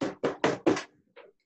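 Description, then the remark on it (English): Loud knocking on a door: four quick, heavy raps in a steady rhythm, then one softer knock after a short pause. No voices accompany it. “Knock three times if you're with me.”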